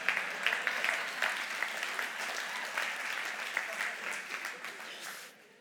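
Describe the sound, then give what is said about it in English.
A church audience bursts into steady, dense applause with a few cheering voices mixed in, the rapid clapping holding strong for several seconds before tapering off at the end. “If you're safe, get up that ladder in front of the whole church and we will cheer.”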